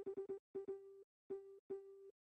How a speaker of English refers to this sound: This is the, do you know your Morse code? You know your dots and dashes?